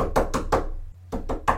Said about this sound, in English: It was well gone midnight the following night when there was a loud rap on our duplex door.